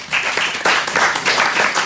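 A crowd applauds steadily, a dense wash of many hands clapping at once, loud and sustained throughout with no voices over it.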